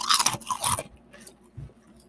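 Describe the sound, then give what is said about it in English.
Loud, brittle crunching of carnitas-flavored wavy potato chips, a dense burst of bites in the first second, then quieter, scattered chewing crunches trailing off. No one speaks. “And these chips have like a porky flavor to them, don't they?”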